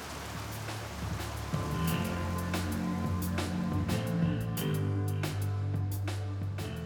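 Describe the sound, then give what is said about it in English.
Heavy rain pours down over a swamp in a steady, dense hiss, punctuated by sharper splashes and drips, with low sustained tones humming underneath throughout. “Rain poured down, soaking Carrie to the bone.”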